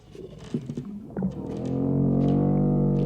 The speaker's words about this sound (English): Now we have this great this sound, sound effect. This sound effect is great. A strange and scary sound. It's a combination of... A verbal thing. We use musical instruments.